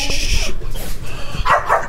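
A dog barks, with two quick, sharp barks close together near the end, preceded by softer whining or yipping noises over some background hum.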